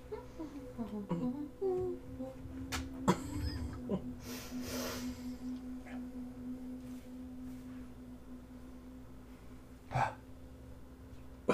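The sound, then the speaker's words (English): A short, stifled sneeze comes as a sharp, muffled burst with a quick breathy catch, over a low steady hum. A second brief breathy burst follows later. “The sneeze.”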